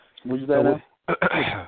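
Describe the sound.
A person with a cold clears their throat with a drawn-out, voiced rasp, then gives two short, sharp coughs followed by another rough throat-clearing sound.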